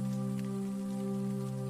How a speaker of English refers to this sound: She hears the twinkling raindrops patter softly on the waterproof fabric above.